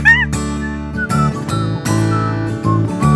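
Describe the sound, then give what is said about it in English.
A cheerful whistled melody rides over a bouncy instrumental backing, with sliding, wavering notes near the start and a steady, loud tune throughout. No one speaks. “Oh, that's a nice whistling, yeah.”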